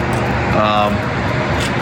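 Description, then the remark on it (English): Steady, loud roar of traffic on I-35 beside Abbott's Travel Center, a truck stop with a supercharger location in Abbott, Texas, between Dallas and Waco: a continuous wash of engine and tire noise with a brief higher whine rising out of it midway through. “It is an 8-stall version 3 supercharger location on the southbound side of I-35, headed between Dallas and Waco.”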